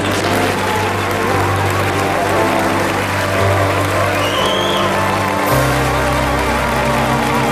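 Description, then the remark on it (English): Steady, loud audience applause welcoming Ronnie Corbett as the celebrity guest, fills the whole stretch, a dense wash of clapping with a low rumble underneath and a slight shift in tone partway through; no one speaks over it. “We give a sporran of laughter and a muzzle of applause to our celebrity Highland Terrier, Mr.”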